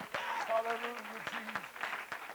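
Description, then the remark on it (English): An audience claps unto the Lord in worship, a dense, steady wash of applause with a few sharper clap accents, while a voice sustains a held, wavering tone underneath. “Would you clap your hands unto the Lord one more time?”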